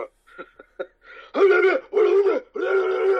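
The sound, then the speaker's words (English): Throat clearing: a few soft clicks and short huffs, then three loud, rough, groaning vocal bursts in a row, each about half a second long, with no talking. “cleared my throat out.”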